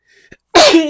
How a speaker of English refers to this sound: That's a first. First sneeze on the podcast.